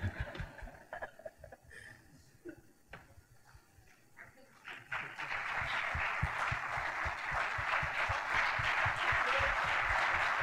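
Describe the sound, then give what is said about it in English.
An audience rises to its feet and breaks into applause for an honoree: a few scattered claps and murmuring at first, then a dense, steady roar of clapping that swells midway and stays loud through the end. “If we could stand and rise and give this legend a round of applause.”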